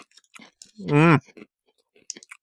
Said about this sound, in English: Wow, why is that so crunchy? Toffee. Tastes like those box of chocolates that you would get, but very crunchy, like almost like potato chip crunchy, but a little bit harder. Yeah. Like a hard potato chip.